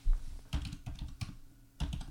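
Rapid, uneven clacking of keys on a computer keyboard, fairly loud, with a few short bursts of typing separated by brief pauses and no voices.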